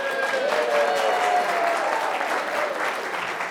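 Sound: wild audience applause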